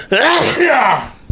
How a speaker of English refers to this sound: And sneeze.